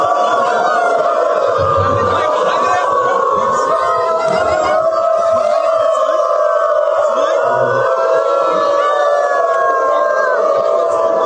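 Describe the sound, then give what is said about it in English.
Hundreds of people who identify as dogs, gathered at a train station in Berlin, Germany, to advocate for their rights, howl together like dogs. Many long, wavering voices overlap in a loud, continuous chorus that carries on without a break, with a bustle of crowd noise underneath. “Hundreds of canine beings gather at Berlin train station to advocate for the rights of people who identify as dogs.”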